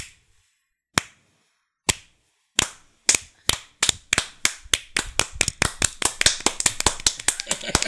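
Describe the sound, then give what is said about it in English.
A slow clap: single sharp hand claps about a second apart that gradually speed up into quicker, louder clapping, with no talking over it. “Slow clap.”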